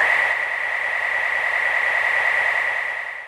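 The inhaling sound effect of the video game character Kirby: a loud, steady, airy whoosh with a bright whistling tone running through it, held for about three seconds before tapering slightly. No one speaks.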